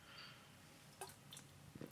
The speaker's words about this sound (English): Sorry, taking a drink.